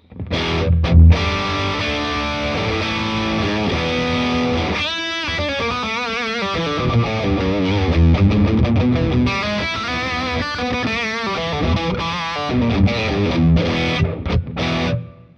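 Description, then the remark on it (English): Electric guitar played through a Triple Rec analog distortion into a Deluxe Reverb amp, thick and saturated with sustained chords and melodic runs, loud, with a brief pause midway and no voices. “So with the triple rec on, an analog distortion,”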